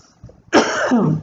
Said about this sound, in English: Oh no, I was asleep. I must be so sick. I'm coughing in my sleep.